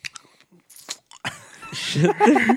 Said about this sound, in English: That's a cough drop.